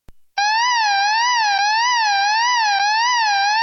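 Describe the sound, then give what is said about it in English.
A loud siren that wavers steadily up and down in pitch, cutting in after a brief click and sounding continuously with no voices, in the style of a European emergency vehicle. “That sounds like a European siren.”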